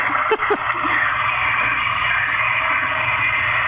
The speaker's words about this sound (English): I'm not even going to touch the fucking thing with my hand. I just kicked the flusher.